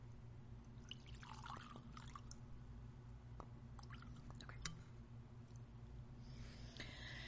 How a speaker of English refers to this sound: It's too sweaty. I'm too sweaty to pour bourbon. Glug, glug, glug.